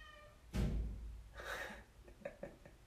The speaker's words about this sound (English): Apparently my cat agrees.